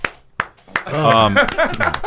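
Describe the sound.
A brief round of applause: a few sharp, separate claps at an uneven pace, quickly joined and then covered by voices talking and laughing.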